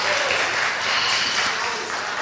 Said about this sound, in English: Oh! Deserves a round of applause.